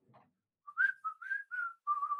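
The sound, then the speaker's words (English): A person whistles a short, jaunty tune of five or six quick notes with little pitch slides, clear, after a faint rustle at the start. “And just walk out whistling.”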